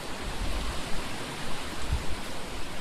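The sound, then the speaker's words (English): Steady, hissing wind rushes outdoors on an island without a break, with deep rumbling gusts buffeting the microphone every second or so. There is no talking, only the constant roar of moving air. “Maybe inside this work will be better for the wind.”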